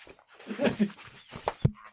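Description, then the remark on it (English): A dog snuffles and whimpers, then bumps the microphone near the end, making a single loud, dull thump. “She thwapped the microphone.”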